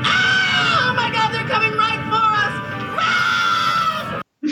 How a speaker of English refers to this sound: He's adorable. I can listen to him scream forever.